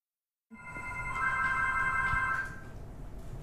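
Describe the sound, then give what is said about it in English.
A telephone rings in one sustained burst of steady, bright electronic tones lasting about two seconds, then stops, leaving a faint room hum. “Yes, I can hear the phone ring now.”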